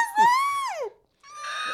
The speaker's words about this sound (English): What was that? I had a hiccup as I was speaking.